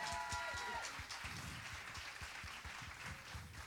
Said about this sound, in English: Would you give all those guys a big round of applause, and girls?